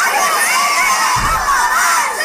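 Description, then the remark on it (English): A loud group of children shouting together in unison, screaming the phrase 'I can do anything I put my mind to', a sustained crowd yell filling the whole stretch with bright, dense voices and no pauses. “Scream it.”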